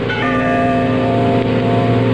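A bell rings out from way down in a gorge with a steady, lingering hum of overlapping tones, the ringing sustained throughout without any speech.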